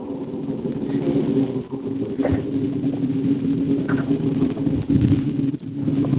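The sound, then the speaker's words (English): The engine of a boat parked across the road runs steadily with a low, droning hum and layered tones. The drone stays constant throughout, with a few faint clicks and knocks over it and no voices. “Yeah, it's a boat that's parked across the road, and they're actually...”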